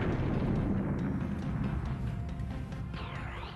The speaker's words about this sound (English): Why don't you throw one of those bombs over here? Let me see them bombs. There you go. There we go. I do appreciate the rather large screen filling explosions every once in a while.